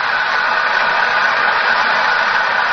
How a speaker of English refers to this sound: Listen to the applause. Yes, undoubtedly she'll sing an encore.